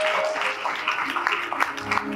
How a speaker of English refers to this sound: Would you clap your hands? Amen. And give him a great big welcome.